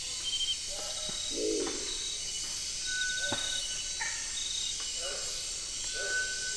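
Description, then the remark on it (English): Eerie whistles of a cinereous tinamou at night, a few short, clear tones sounding faintly over a steady night chorus of singing insects, calling frogs and occasional low croaks of a crested owl. “Insects sing and frogs call, and then we hear the eerie whistles of a cinereous tinamous.”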